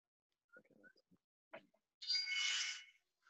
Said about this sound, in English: That was a soft buzzer. Sorry, it's far away from the phone.